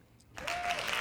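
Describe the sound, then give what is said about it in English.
A burst of hand clapping breaks out suddenly after a brief quiet moment and continues as steady, fairly loud applause, a dense patter of many claps with no voices. “Hand clap.”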